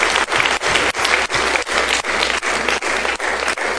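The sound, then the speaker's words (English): An audience at a sermon claps steadily and loudly, many hands blending into a dense, continuous wash of applause with a faint rhythmic pulse, no voices standing out. “I just want to suggest to you, come on, let's applaud.”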